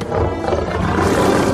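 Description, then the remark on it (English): A lion roars loudly in a film scene where a man comes face to face with it, a deep, rough, sustained growl that fills the whole moment without a break and with no voices over it. “Now he's face to face with the lion, and he's scared and looks back on the wall, and what does he see?”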